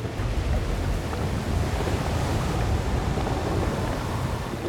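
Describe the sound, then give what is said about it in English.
A steady, heavy wash of surging water, like waves swelling and rolling, with a deep low rumble and constant roar that never lets up. No voices. “The bloodied water swelled, and then one small creature plopped out onto dry land.”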